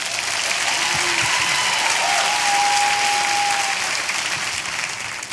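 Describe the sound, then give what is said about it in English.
A church audience claps and applauds steadily for several seconds, welcoming the kids pastor up, a dense, even wash of hand claps with a faint high whistle briefly rising above it. “Clap your hands, show your love.”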